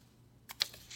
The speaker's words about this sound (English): We wrote down one digit of the year per piece of paper, and now we're turning those papers over to see how close we are.